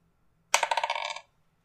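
A quick rattle of dice tumbling across a hard surface, a burst of rapid clicks that bounce and settle within about half a second, fairly clear with no talking, during a tabletop game.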